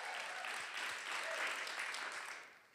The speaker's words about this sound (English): Come on, let's clap for every person that's come for the first time.